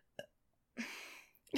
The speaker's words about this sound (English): Sorry. That was the weakest burp I've ever seen. I can't belch.